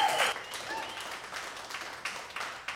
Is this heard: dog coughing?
no